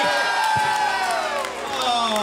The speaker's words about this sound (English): So I'd like the applause to be somewhat conflicted, if that's possible.